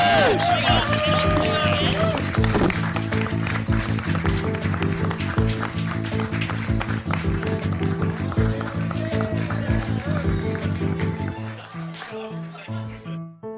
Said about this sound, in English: But thanks so much for coming out today, guys. Give yourselves a round of applause, and that means we can leave.